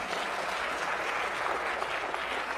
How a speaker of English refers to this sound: Let's clap with her. Come on, let's clap with her.